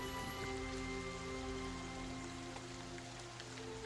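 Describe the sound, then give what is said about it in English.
Steady rain falling at a graveside without pause, a dense, even hiss of drops spread across the whole clip, with a faint low droning hum sitting underneath. “There stands a priest with 2 men with shovels just standing in the rain.”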